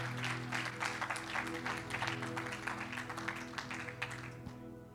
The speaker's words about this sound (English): Clap your hands as you are seated before the Lord.